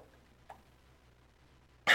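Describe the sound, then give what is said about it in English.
After a stretch of near silence with one faint short catch, a single loud, harsh cough bursts out at the very end and is cut off abruptly. “You guys just have to bear with me on the coughing part.”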